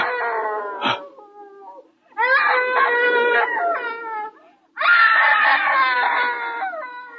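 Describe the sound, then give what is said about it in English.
A woman screams in three long, shrill, wavering bursts separated by short pauses, loud, with no talking around them. “It's the screaming woman.”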